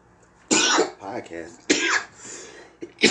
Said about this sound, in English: Damn, yo, I can't get through one intro of this show without coughing. It's like a curse, man. I don't understand what it is. I used to think it brings character to the show. Sometimes it's a little difficult. It interrupts my whole flow.